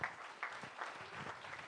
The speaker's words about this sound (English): You can clap for the Lord.